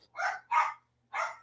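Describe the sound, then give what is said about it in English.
Three sharp barks from dogs at home, agitated by people leaving and coming back, two in quick succession and a third after a short pause, clear with no talking over them. “the dogs will sit and bark at you because they're stupid”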